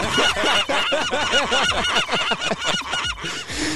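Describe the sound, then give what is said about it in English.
A rapid series of loud seagull squawks, harsh rising-and-falling cries repeating in a steady chattering run for several seconds, clear with no talking. “play Chia, where you get to be a seagull”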